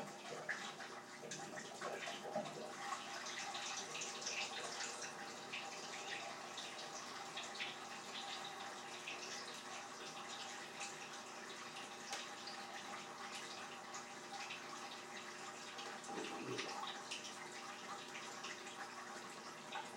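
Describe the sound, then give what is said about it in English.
Water gushes steadily into the drum of a coin-operated washing machine, a continuous rushing, splashing stream that holds at an even, fairly loud level for the whole stretch, with no voices. “Add more money for more water. Press soil level.”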